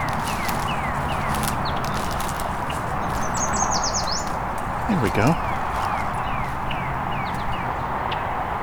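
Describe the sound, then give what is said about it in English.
A yellow warbler sings its "sweet, sweet, sweeter than sweet" song, one quick, high-pitched phrase of rapid sweet notes, with other birds chirping faintly over a steady wash of background noise. “See if I can get a good recording of our yellow warbler doing the sweet, sweet, sweeter than sweet song.”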